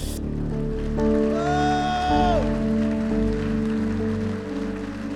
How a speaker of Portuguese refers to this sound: Oh, rabastê, pode aplaudir o Senhor.